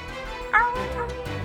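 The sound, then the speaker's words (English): A person gives a brief imitation howl, one short rising-and-falling vocal cry that sounds fairly loud, with a low background rumble continuing underneath. “Little howl.”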